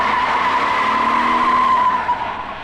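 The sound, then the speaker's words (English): A car's tires screech in a long, loud skid, a sustained high squeal that holds steady before the engine noise fades as the vehicle pulls away. “When the car got out of view”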